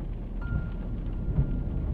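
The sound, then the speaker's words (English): Steady rain hisses continuously with a deep, rumbling low end, heard from inside a car stuck in a traffic jam, with a brief thump partway through. No one speaks. “I like the rain, and I love being with you all.”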